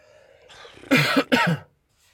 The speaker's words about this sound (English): Gonna have to ignore my coughing again.